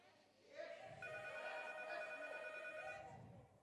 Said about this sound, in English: If somebody says yes, the phone will stop ringing.